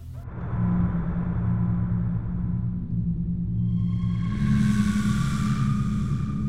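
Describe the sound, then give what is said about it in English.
Creepy, menacing dungeon music of Dodongo's Cavern, with no melody, built on a deep, steady bass drone, with eerie high squeals and a hissing, metallic swell of industrial clangs rising in the second half. No voices. “There's a deep bass drone punctuated by high squeals, hisses, and industrial clangs.”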